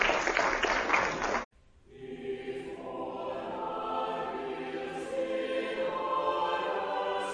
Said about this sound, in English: Thank you, Dr. Malish. Let's give Dr. Malish an applause. Thank you.